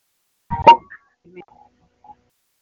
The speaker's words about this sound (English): We're experiencing a lot of interference on the most holy night of the year.